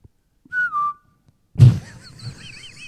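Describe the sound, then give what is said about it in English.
A person whistles a brief imitation of a finch call, a clear mid-pitched note that dips downward, followed by a sudden thump and some faint, twittery chirps. “And, you know, I mean, you see a finch. I can call it a finch. I know what do they sound like?”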